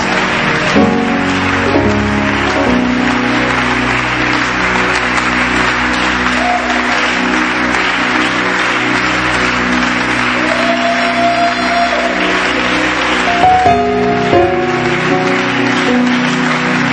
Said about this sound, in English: Are you happy to be here? Show it with a louder hand clap unto the Lord. Amen.